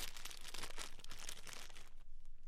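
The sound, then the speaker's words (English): A plastic fortune cookie wrapper is crinkled and torn open, a continuous bright crackling rustle with sharp crunchy bursts that eases off near the end. No one speaks. “Cross, open your cookies. Open yours on air.”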